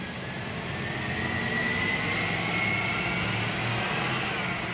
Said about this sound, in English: And as another tour bus pulls away from the car park below